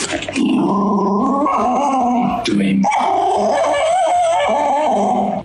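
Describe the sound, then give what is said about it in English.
An angry dog snarls and growls continuously and loudly, with a sharp bark-like burst in the middle before the rough, throaty snarling resumes for several more seconds. “He opens up the dog's Big Mac, and it's the size of a Tic Tac, and he is pissed off.”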